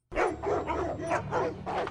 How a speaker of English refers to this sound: The barking.